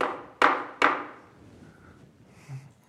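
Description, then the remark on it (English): Three sharp, evenly spaced, loud knocks on a wooden surface, each ringing out with a short echoing decay before fading into quiet. “And he's just knocking.”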